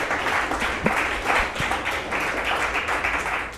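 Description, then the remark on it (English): An audience applauds the speakers steadily for a few seconds, a dense, moderately loud wash of many hands clapping at once with no one speaking over it. “Let's give a round of applause to our speakers.”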